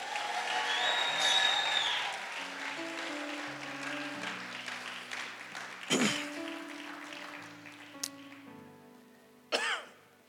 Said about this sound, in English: Clap for her as she goes.